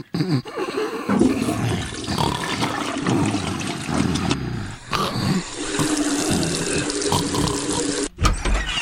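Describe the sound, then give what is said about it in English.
A person urinates while crouching above a toilet seat, the stream splashing loudly and steadily into the toilet bowl, a continuous rushing stream with a couple of brief dips before it carries on. No one speaks. “Oops, some of it splashed over the edge of the scene onto”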